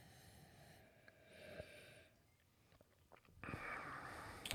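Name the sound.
sipping beer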